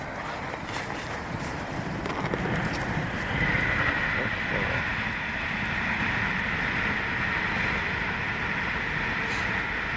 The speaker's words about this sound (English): Train line there. I knew there was one nearby, but I didn't realise it was quite that close. Yeah, it's really close.